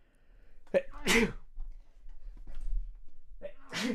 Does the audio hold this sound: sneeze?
yes